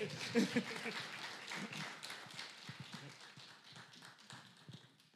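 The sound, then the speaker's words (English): A crowd in the Eau Claire community claps steadily as a man comes up on stage, with a few cheering voices near the start, and the applause gradually thins and fades toward the end. “As he comes up, can y'all cheer this brother on? Because we need some cheers.”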